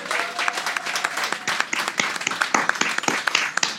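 A crowd breaks into steady applause, many hands clapping in a dense, crackling patter that holds at an even loudness throughout, with no voices standing out.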